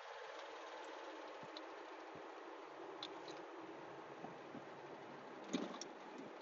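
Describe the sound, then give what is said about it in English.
A steady, rough engine drone fills the space from inside an old car, broken by scattered faint ticks and clicks and one brief louder rattle near the end. No one speaks. “Oh my God, you guys can probably hear my car like freaking out. My car's so old.”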